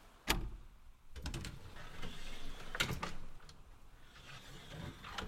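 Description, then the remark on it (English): A sharp metallic click as the little handle of a small door to a communications room is turned, followed by the door swinging open easily with faint creaks and a second thud, over a quiet background hum. “You turn the little handle and the door opens easily.”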